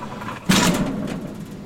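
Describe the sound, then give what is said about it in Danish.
A heavy hatch, one that is always supposed to be kept closed, is hauled open with a sudden loud metallic clunk and scrape, followed by a low rumbling resonance that slowly fades. No voices are heard. “Jeg er ret sikker på, at det herinde igennem den her lem, som også er lidt skummel, og som faktisk altid skal være lukket. Prøv at høre.”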